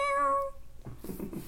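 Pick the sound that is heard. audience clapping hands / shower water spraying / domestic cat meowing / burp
domestic cat meowing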